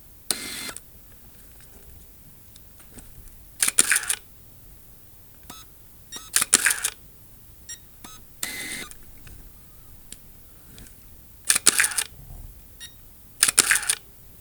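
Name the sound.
medium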